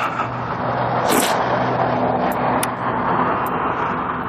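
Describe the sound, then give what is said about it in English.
An SUV truck's engine runs at a crosswalk with a steady, loud low rumble and road noise throughout, broken by a few brief high-pitched squeaks or clicks; no one speaks. “not to oversell it, but that truck right there nearly killed me.”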